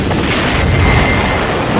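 A loud, continuous explosion effect, a deep rumbling roar with heavy low-end noise that holds steady for nearly two seconds instead of one sharp blast. No voices are heard.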